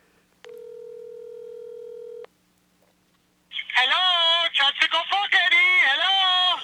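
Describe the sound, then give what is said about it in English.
A steady telephone dial tone hums for about two seconds and cuts off, followed by a short silence before a loud voice starts talking. “time for a not-so-friendly phone call to my old friend Vic the Vice”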